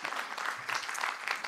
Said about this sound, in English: And so if you're a giver, you are making a difference all around the world to people you'll never meet, but you know what, you're doing something. So again, round of applause for you guys.